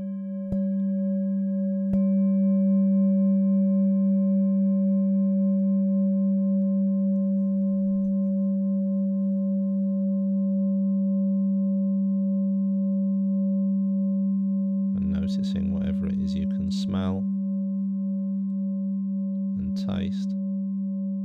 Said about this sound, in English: Now gently moving your attention from the breath to the sound of this bell.